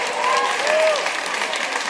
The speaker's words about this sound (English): I love that's what gets the applause.